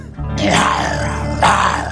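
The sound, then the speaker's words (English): A man imitates a lion with two loud, rough, throaty growls, the second rising sharply before trailing off, with low rumbling tones throughout, growling in response to a real lion. “There was a lion, so I just started growling like a lion.”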